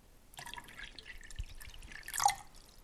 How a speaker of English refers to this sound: What you do then is you pour hot boiling water in. Okay, so. And then you add cold water.